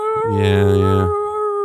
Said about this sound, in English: Coyotes, they're in that open space, so at night it's kind of cool. Sure. When you leave the windows open, you can hear them.